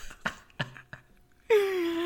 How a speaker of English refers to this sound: So, I also, like, just, I'm really hungry, and I tried to eat a peanut, and I realized that it was going to be too loud, and so it's just, like, in my mouth now.